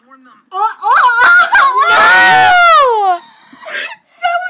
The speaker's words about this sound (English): Stop yelling.